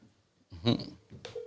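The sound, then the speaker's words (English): A single short electronic keypad beep from a studio phone being dialed sounds near the end, fairly clear, following a brief muffled rumbling noise. “I'm about to call this shit.”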